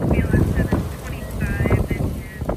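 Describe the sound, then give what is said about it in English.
Strong wind gusts roar and buffet the microphone in a town in California's Napa Valley during wildfires, swelling and easing in waves, with a low rumble throughout and faint indistinct voices in the background. “Very loud winds are whipping through the town, right? There's moments where it dies down and then it comes back.”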